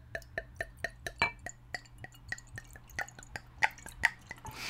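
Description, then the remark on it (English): Wine glugs from a bottle into a glass in a quick, steady rhythm of bright gurgles with faint ringing clinks, ending in a brief hiss, with no one talking. “just poured my glass of wine and now I'm pouring her glass”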